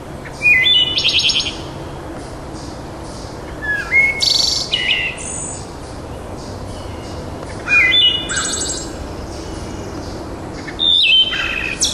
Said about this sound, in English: we can go back and listen to a 30-year-old wood thrush, because if we don't start making a change here, that's what we're going to have to do to hear that beautiful song. Let me let you hear it again.